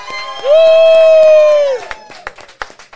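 A live audience cheers as a guest is introduced: one loud, sustained, steady-pitched whoop holds for over a second, then breaks into scattered claps and short bursts of crowd noise.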